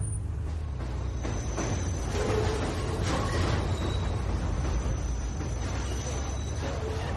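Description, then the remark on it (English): A subway train rumbles past, a loud, steady roar of wheels on track with a thin metallic whine riding above it, the noise swelling slightly midway before holding constant. “The subway right there, all of this is, I mean, it's too quick.”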